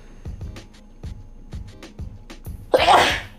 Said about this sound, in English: I gotta sneeze.